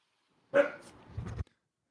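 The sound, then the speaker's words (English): A single short, high-pitched puppy bark trailing into a brief yelping whine, in a home studio, against an otherwise silent background. “I'm going to throw it to you as you try to manage a puppy in your home studio.”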